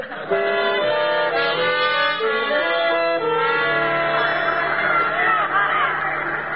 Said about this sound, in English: Oh, my, what a crowd. I guess every kid in town turned out to see the race.